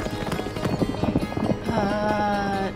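Hooves of a horse ridden fast by a man clip-clop in a quick, steady rhythm for a couple of seconds, fairly loud, before giving way to a sustained tonal sound at the end.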